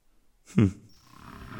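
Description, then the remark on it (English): A single short Barbary lion roar, loud, rising into a throaty burst and cutting off after half a second, followed by a low rumbling background. “Yes, they had zebras, snakes, baboons, leopards, bears, elephants, and of course, the Barbary lions we just met.”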